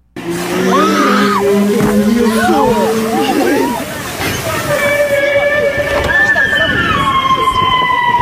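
A whale squeals underwater without pause, with wavering rising and falling whistles followed by long, steady high tones, all over a constant loud watery hiss.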